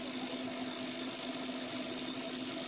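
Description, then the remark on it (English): A power tool like a drill or car polisher runs without pause, giving a steady, even motor drone with a firm low hum and a broad buzzing hiss, no voices. “Who's drilling here? Somebody's not in. who's polishing a car here?”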